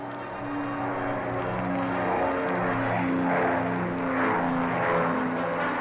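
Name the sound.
airplane taking off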